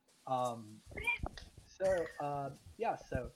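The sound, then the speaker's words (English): A female cat named Vanilla meows loudly, two drawn-out, tonal calls about a second apart, with shorter chirpy vocal sounds in between and after. “She talks more than you.”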